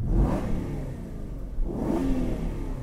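A deep Aston Martin V8 engine revs hard twice with the roof down, the low exhaust roar rising and falling with a brief dip between bursts, loud with open-air wind rumble.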